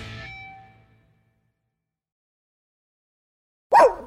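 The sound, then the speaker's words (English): A single sharp, loud dog bark breaks a long silence near the end. Before it, a ringing tone fades out, and there is no talking. “You hear that? Your dog knows spring is coming sooner than you think.”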